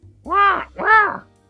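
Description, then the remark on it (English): Two loud, drawn-out squawks in quick succession, each rising and falling like a large crow's harsh caw, voiced by a person imitating the call of a massive black bird. “You come back, you're relaxing, and all of a sudden, a massive black bird awaits on the sill of a window with something attached to its leg, and it's squawking at you.”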